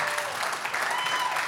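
Steady, dense applause from a church audience for its pastors, a continuous bright wash of many hands clapping at an even level for the full stretch, with no voices rising above it.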